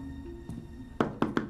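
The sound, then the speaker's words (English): Four sharp knocks on an apartment door in an apartment block with no doorbells, quick and evenly spaced, preceded by one softer tap, all over a low steady hum with no talking. “What, no doorbells in this apartment block?”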